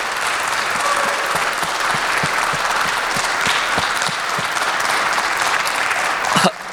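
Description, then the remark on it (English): Sustained applause from a sizeable audience for graduating seniors, a dense wash of clapping with scattered sharper claps, steady and fairly loud throughout before a brief louder burst near the end. “Can we actually give them another round of applause for our seniors?”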